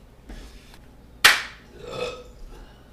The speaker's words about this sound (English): Just sync it with the burp. The burp is not as consistent as the clap.